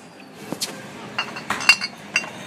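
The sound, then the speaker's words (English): Small glass bottles for filling at organic oil and vinegar dispensers clink together several times at irregular intervals, bright, with light rattling between the sharper taps over a quiet background. “And it looks like there's like little glass bottles that you can even put it in.”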